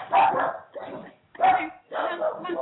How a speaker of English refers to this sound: We got the dogs. I've got four poodles here, and every time somebody shows up, they love to bark.